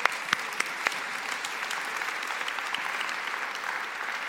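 A church audience claps steadily, many hands blending into a dense, continuous patter with a few sharp individual claps standing out at the start.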